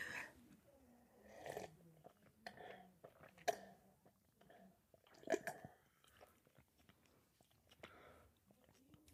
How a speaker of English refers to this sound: Anyway, let me take a sip of my drink.